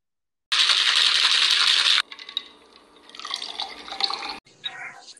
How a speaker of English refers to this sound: I'm going to try to get y'all red cups. Get ready to pour up with us.